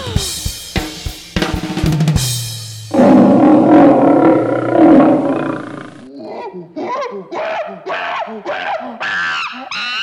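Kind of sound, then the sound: animal, lion roar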